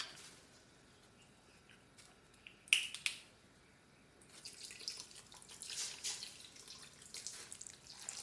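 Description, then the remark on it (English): Water is poured into a pot to dissolve sugar, a steady splashing rush that builds after a sharp clink, fairly quiet, with no talking. “Water to dissolve it.”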